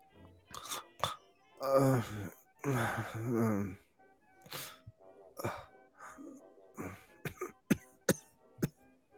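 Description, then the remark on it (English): A seemingly feverish, barely conscious man mumbles and groans in low, slurred bursts between heavy breaths, followed by a string of short, sharp coughs. “So, like, he's just out of it? Breathing, mumbling, coughing. It's almost like he's feverish or something.”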